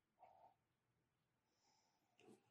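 Two short, breathy sniffs separated by a pause of about two seconds, a quick intake of air as someone smells wine in a glass. Soft and airy, with no talking.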